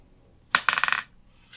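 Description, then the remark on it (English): A quick burst of hard clicking and clattering, like small dice rolled across a tabletop during a tabletop role-playing game, with several rapid bright impacts that settle within half a second; fairly loud, no voices. “I hate these dice.”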